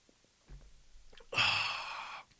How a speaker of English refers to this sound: Well, I'm going to take a sip of water because I'm kind of thirsty.